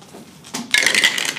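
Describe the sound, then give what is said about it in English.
Dice, rolled for a dexterity saving throw, clatter and rattle across a tabletop, a short bright burst of clicking that settles after about a second, fairly loud with no talking. “Can I get you to make a dexterity saving throw? Yes. Do you need dice?”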